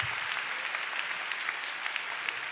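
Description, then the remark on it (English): An audience at a church service claps for God together in a dense, steady wash of applause, many hands blending into a continuous crackle with no voices standing out. “Let's give God a big clap.”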